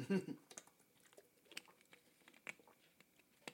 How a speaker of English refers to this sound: Excuse me while I take a sip of water. Sorry.